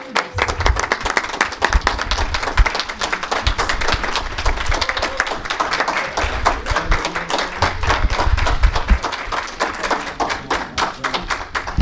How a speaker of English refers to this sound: Can we have a round of applause for all the candidates?